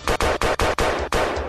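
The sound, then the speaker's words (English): A rapid volley of about six loud gunshots fired in quick, slightly uneven succession, each blast sharp and booming, with no voices present. “Is that gunshots, boom?”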